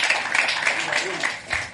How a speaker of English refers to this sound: And then last but not least, we have the president of the Yale Club of Nigeria here. I think he graduated in 1970 or something. Wow. Please, a round of applause for him.